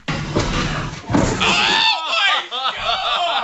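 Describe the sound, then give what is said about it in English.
A heavy, sharp thud of a head slamming into the floor lands early, then loud, excited voices burst out shouting and reacting over a noisy crowd. “Because the sound of his head hitting the floor is ridiculous.”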